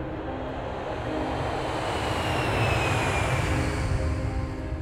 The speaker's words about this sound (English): As the plane took off for San Diego, I thought of what I would say to my dad.